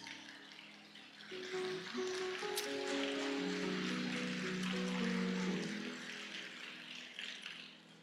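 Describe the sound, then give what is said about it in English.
An audience applauds in a dense, steady wash of clapping that swells after the first second, holds for several seconds, then gradually thins out, with a faint low tonal hum underneath. “So I don't really know why you're clapping.”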